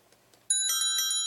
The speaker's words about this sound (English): Yeah, it's a different alarm clock tonight.